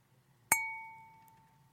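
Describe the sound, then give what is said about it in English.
A single bright clink of wine glasses touching in a toast, clear, followed by a sustained ringing tone that slowly fades over a faint low background hum. “Cheers, everyone.”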